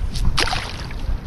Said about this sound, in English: a few weeks ago when my husband, my son, and I just spent a few hours alone, the three of us, at the Berkeley Marina throwing pebbles into the water. All right, let's get a handful of rocks. Now let's throw them in the water. Ready? One, two, three.